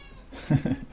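A cat meows twice in quick succession, fairly loud, each call a short tonal cry with a rising-falling pitch, against a quiet background, as it seems to want to drink water out of the sink.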